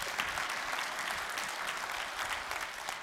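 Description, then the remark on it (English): A crowd applauds steadily, a dense wash of many hands clapping at once with no clear individual beats, holding an even level for the full few seconds. “But see, when we don't, yeah, come on, give a big clap for that because that's good.”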